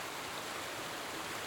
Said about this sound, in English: I look down at it. The dark and impenetrable water that's rushing past me. It's furious. It's so loud, I can barely hear myself think at times.